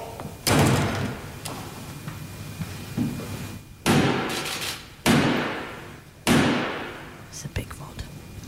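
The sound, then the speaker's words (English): A heavy door slams shut with a loud, echoing bang, followed by three more booming impacts spaced about a second apart, as Black Rod knocks on the door at the state opening of Parliament, over faint murmuring. “Close the door.”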